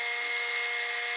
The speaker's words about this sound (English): All right, I'm going to start drilling on this side. Okay.